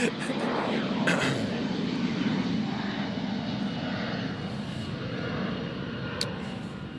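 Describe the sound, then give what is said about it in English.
An airplane roars steadily overhead, a broad, continuous engine rumble that stays loud throughout with no other sounds breaking through. “I'm gonna let this plane go by.”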